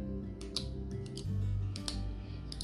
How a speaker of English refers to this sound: And then my other little baby is my Inner Gel Liquid Gel and the 0.5. I love her. She this fine tip. She just like this nibby little needle point pen. Like, I love her. And you hear, that's her click too.